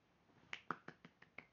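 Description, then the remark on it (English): A quick run of six hand claps in an even, brisk rhythm, sharp but fairly soft, with a brief quiet moment before they begin and no talking; the clapping is done to cover a growling stomach. “That's me clapping. So that you wouldn't hear my stomach growling.”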